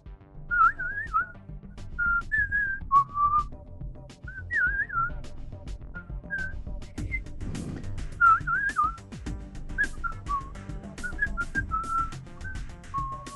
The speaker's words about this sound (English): That terrible whistling you just heard is the opening music of Ennio Morricone for Sergio Leone's classic film, The Good, the Bad, and the Ugly